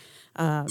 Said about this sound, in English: All right. So, yeah, don't buzz early. I was trying to make sure it works. So, squeak to answer, I guess, is what we're doing here.